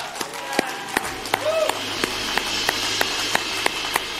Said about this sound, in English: Okay, now everyone else who's made this decision, look around. Now let's clap and rejoice together.